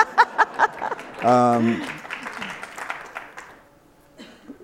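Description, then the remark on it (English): A few sharp claps, then a brief voiced whoop from the crowd, followed by scattered audience applause that gradually fades to quiet. “So now you can clap.”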